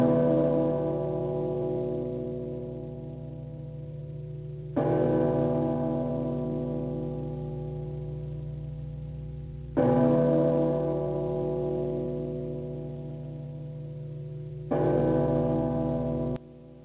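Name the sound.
bells ringing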